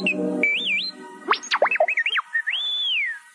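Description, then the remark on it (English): The droid R2 beeps and warbles, with rapid electronic chirps, rising and falling whistles and a long wavering tone at the end, clear with no talking, heard inside the Sandcrawler. “Just as he had begun feeling really sorry for himself, however, he heard a familiar beep.”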